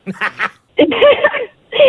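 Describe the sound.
A voice does an impression of the cartoon character Donald Duck, producing three bursts of raspy, buzzing quacks in quick succession, fairly loud, with short pauses between them.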